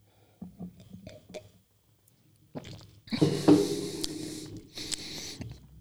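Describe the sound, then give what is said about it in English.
A few soft wet clicks, then a longer, hissy slurp as someone takes a strong sip of a Lexington Brewing beer, with gurgling mouth noises and a final short slurp. No one speaks. “So I'm going to take one more strong sip.”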